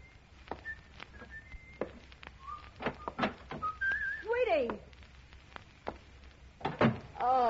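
Someone whistles a slow tune in short, clear held notes that step up and down, broken by sharp knocking taps and a few sliding vocal sounds near the end.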